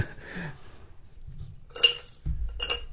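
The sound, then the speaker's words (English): Two sharp, ringing clinks of a couple of pieces of water ice, not dry ice, dropping into a glass, a short pause apart, over a low background rumble. “I threw a couple pieces into my glass, but no, they're just water ice.”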